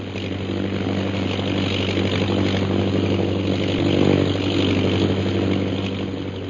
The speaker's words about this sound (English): The plane's circling the camp. It'll be over us again in a minute.